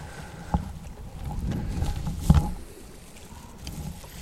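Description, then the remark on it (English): A boat engine rumbles low on the water as the boat approaches, its drone swelling slightly and then easing, with a couple of sharp knocks and some wind noise, no one talking. “we come into this boat, boys, let's have you strip them in.”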